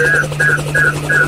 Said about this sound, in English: Hey, my helicopter just arrived, so...